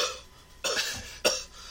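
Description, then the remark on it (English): A voice imitates a choking cough from a piece of kernel stuck in the throat: two sharp, raspy bursts about half a second apart, fairly loud, with a strained throaty quality and no words. “I was coughing a lot, and then...”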